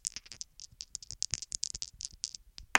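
Dice rolling: a rapid, irregular run of small hard clicks and clatters, ending in a louder burst of rattling. No voices.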